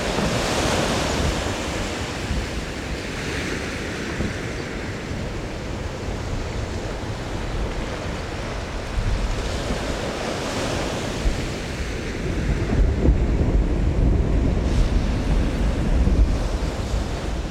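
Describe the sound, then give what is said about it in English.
A deep rumble of a huge chunk of glacier ice breaking off in Glacier Bay mixes with a steady roar of the large waves it causes and wind, the low thunder swelling heavier toward the end. No voices. Recorded by Bernie Krause. “And the rumble of a huge chunk of ice breaking off a glacier and causing large waves.”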